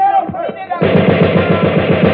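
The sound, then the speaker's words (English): A brief shouted voice gives way to a loud, rapid burst of automatic gunfire fired over a truck, its sharp shots rattling in a steady, fast rhythm for over a second. “Fire a burst over the truck.”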